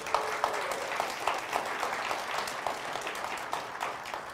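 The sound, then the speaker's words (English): The Crossroads audience applauds its graduates, a dense, steady patter of many hands clapping at once, sustained at an even loudness throughout with no voices standing out. “People within Crossroads, we've got about 6 graduates that I'm tracking so far, so just want to offer a big round of applause to all those graduates out there.”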